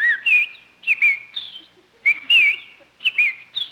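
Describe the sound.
A whistled imitation of a bird call, presented as a bird on a lawn on a sunny day and said to spell out L-S-M-F-T (Lucky Strike means fine tobacco): clear, high warbling chirps in short bursts, repeating in a quick rhythmic pattern about four times, fairly loud with no talking.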